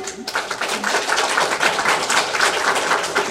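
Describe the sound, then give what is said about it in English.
A room full of people clapping their hands together, a dense, steady patter of applause that starts abruptly and holds at an even, fairly loud level throughout. The women in the audience are clapping in answer to a poll taken by show of applause. “All the ladies in the room, would you please clap your hands?”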